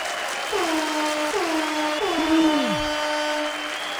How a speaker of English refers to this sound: Deserves an extra round of applause.